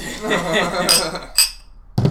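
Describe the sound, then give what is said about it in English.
Glasses of 1792 Small Batch bourbon clink together in a toast, a couple of bright, short ringing taps, with soft voices underneath and a dull thud at the very end. “Cheers. It's not a shot.”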